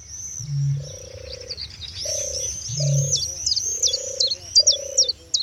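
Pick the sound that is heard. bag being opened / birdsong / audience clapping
birdsong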